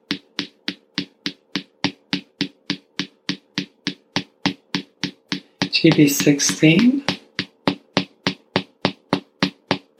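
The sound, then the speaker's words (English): Steady, even fingertip taps on acupressure points GB13 and GB14 on the right-hand side repeat about three times per second through the whole stretch, crisp and moderately loud, pausing only under a brief spoken word before the rhythm resumes. “So we can count the taps instead of sheep.”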